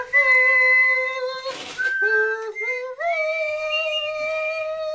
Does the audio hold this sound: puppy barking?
no